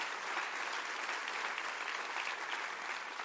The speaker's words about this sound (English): Would you clap your hands real big right now?